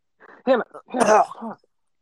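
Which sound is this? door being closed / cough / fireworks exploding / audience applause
cough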